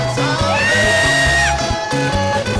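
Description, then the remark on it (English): An audience shouts and whoops, with sustained yells rising over a loud, driving rhythmic backing of thumping bass beats, all continuous through the short stretch. “I feel like shouting. Somebody, you're not shouting.”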